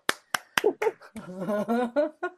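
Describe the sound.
Three sharp, evenly spaced hand claps ring out alone, then a voice starts talking in a lively, sing-song way and carries on to the end.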